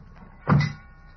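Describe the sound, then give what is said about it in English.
A single heavy truck door slams shut with a deep, solid thud, followed by quiet background hum and no talking. “Slam the doors.”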